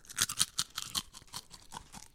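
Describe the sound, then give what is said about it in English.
Crisp, crackly crunching of a chip being chewed, a quick run of brittle bursts that fade into softer crunches over about two seconds, with no talking. “Alrighty, final crunch.”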